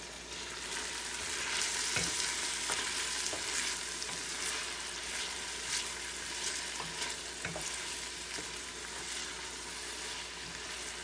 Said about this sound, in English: And as you can see, we're about halfway through the mark of sauteing. So it's a perfect time to put the garlic in.